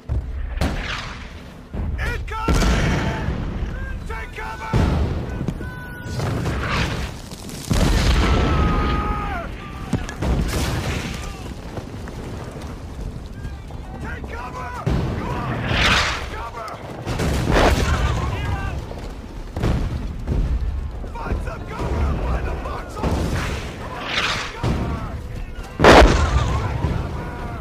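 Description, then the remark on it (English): Heavy German artillery bombarding a front-line foxhole position: repeated loud booming explosions over a constant low rumble as the ground shakes, one blast after another with no pause, and indistinct voices faintly audible in the chaos. “Suddenly, explosions fill the air and the ground shakes beneath your feet as the Germans begin bombarding your location with heavy artillery.”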